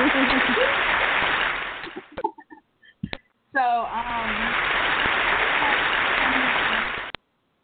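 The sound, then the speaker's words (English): A group applauds itself for hitting a small goal: steady, dense clapping for about two seconds, a brief pause broken by a few sharp sounds, then a second longer round of applause that opens with a short excited cheer. “So I'm going to give ourselves a round of applause for hitting that little goal.”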